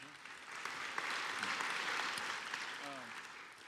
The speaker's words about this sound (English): Wow, that's good. Yeah, we can clap for that. That's awesome.